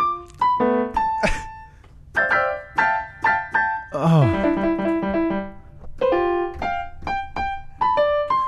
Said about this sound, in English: Let me go play. Okay, go play. It sounds so good. Is this our new podcast? Yeah. We're just gonna play the keyboard? We'll call it Piano Pals. What I want... Oh, that's beautiful!